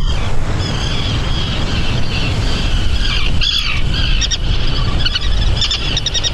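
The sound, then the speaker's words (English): Puffins give a run of buzzy, stuttering high calls that rise and fall like a revving chainsaw, repeated in bursts over a constant low rumbling background, with no talking. “I've yet to hear a chainsaw. It's that revving in the back.”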